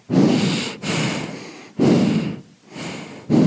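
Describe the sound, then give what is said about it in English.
Loud heavy breathing from a man on a phone call, in a steady rhythm, about four rasping breaths with brief pauses between them, filling the line with no talking. “Because the breathing is overwhelming to me.”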